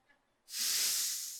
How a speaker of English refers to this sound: What did I just do? I just breathed in life.